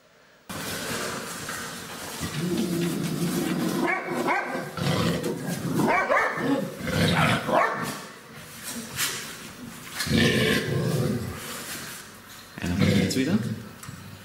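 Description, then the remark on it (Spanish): A mother dog with her puppies barks and growls, loud and nearly continuous, with harsh rumbling snarls breaking into sharper barks in several bursts over about fourteen seconds. “Mire esta bella perrita con sus cachorritos. Póngame audio, porfa.”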